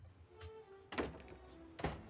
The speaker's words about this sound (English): A lot more visual gags, actually. Like Homer getting the door shut in his face repeatedly, and even by his house.